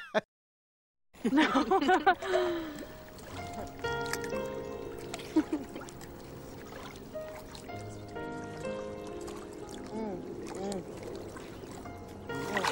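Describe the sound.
Water trickles and splashes, a steady gentle sound running throughout, with people talking and moving over it after a brief silent start.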